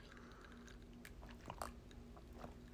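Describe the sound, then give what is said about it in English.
Close-up swallowing and sipping noises of a person drinking water, a few wet gulps and small mouth clicks at an uneven pace, quiet but intimate right at the microphone, with no talking. “But ASMR in the sense that you are listening to every gulp of water I take to stay hydrated.”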